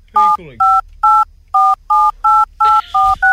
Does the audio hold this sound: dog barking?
no